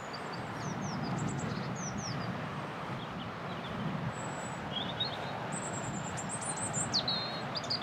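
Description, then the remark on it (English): A robin sings a run of thin, high, warbling phrases, clear, over a steady low outdoor rumble like wind or traffic, in spring. “Robin just wistfully.”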